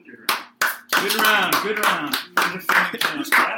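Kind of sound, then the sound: human body sound, hand clapping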